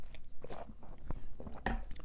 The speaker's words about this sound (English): Hold on, I need another drink of water.